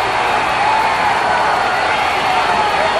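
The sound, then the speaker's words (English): A wrestling crowd roars and cheers without a break as Lawler puts a spinning leg lock on Hart, a dense, loud wash of voices with bits of whooping and applause mixed in, holding steady the whole time. “The crowd loving it.”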